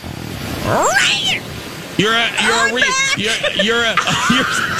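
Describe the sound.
A person loudly imitates a yowling cat in heat, with a rising wail followed by a string of drawn-out, warbling cries that waver up and down.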